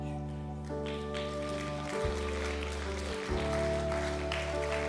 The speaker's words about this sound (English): You're like, why are they clapping? Because heaven's celebrating.